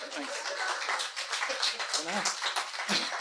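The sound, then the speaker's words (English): An audience, told to clap, claps steadily, a dense rattle of many hands at moderate loudness, with murmured voices mixed in underneath. “Comes to something we have to tell an audience to clap.”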